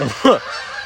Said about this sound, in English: Oh my gosh, there's two packs of them. They went different ways. One went that way and one went that way. One went east, one went west. All right, it's not a Canadian goose because a goose is not Canadian. It's a Canada goose.